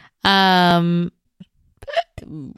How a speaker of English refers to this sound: Ooh, that was a herp. A hiccup burp.